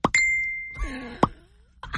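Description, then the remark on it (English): A voice imitates a phone's message alert: a short pop, then a steady high ding-like tone held for about a second, with a warbling vocal sound and another sharp pop at the end. “And then his phone goes like this.”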